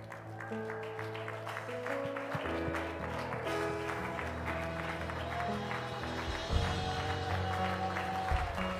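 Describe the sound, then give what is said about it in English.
An audience at a worship service claps steadily along with sustained keyboard or organ music, the dense clapping forming a continuous wash beneath the held chords, with no one speaking. “Oh, clap your hands all across this place today.”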